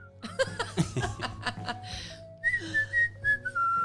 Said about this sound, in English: Some extra lovely whistling from … there.